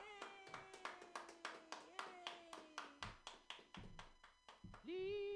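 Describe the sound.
Steady, rhythmic hand clapping, about four crisp claps per second for several seconds, with a long sustained voice sliding downward over it and another voice rising at the end, at a comedy show at Mutiny as the first comic of the night is introduced.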